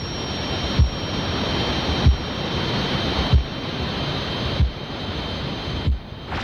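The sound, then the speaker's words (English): A simulated tinnitus sound created by the British Tinnitus Association: a steady, loud rushing hiss with a thin high whine, pulsing with a soft low thump about every second and a quarter. No voices. “But people can experience lots of different sounds. These simulations were created by the British Tinnitus Association.”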